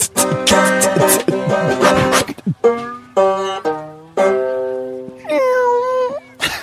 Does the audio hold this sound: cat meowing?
yes